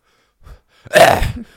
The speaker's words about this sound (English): I have a little cough. No. You hit your vape. Yeah, okay, but I always cough after I hit my vape when I have